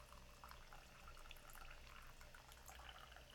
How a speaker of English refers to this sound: Before, whenever you're ready, slowly adding water over the leaves in your own way that feels intentional and significant, that we are observing the beauty of the water.